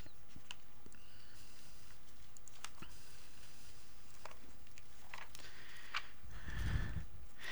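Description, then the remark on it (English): Thin, skinny paper-like Bible pages being flipped and fumbled with while turning to Hebrews chapter 4: soft, crinkly rustles and light taps scattered irregularly, quiet, with a fuller rustle near the end and no one talking. “I tell you, this using a different Bible this morning, these skinny paper-like pages, I can't hardly get through here.”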